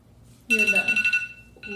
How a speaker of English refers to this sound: Ooh, not my alarm sound. Yeah, deep sleeper. Oh my god, I'm so sorry. It's okay, it just was, I woke up for a second. That is your alarm sound, I do know that.